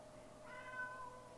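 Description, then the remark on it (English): A single soft, drawn-out meow from a little female pet cat at a friend's house in Saskatoon, Saskatchewan, faint, rising briefly and trailing off against a quiet background with no talking. “I have a sweet little kitty here. You might hear her.”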